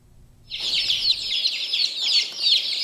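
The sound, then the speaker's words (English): Many baby chicks, about 10 days old, huddled under a heat lamp and surging forward to feed on grains and insects, cheep continuously in a dense, high-pitched chorus of overlapping peeps, loud, starting abruptly after a brief low rumble and continuing without pause. “Fluffy baby chicks huddle together under a heat lamp, then surge forward to feed on grains and insects.”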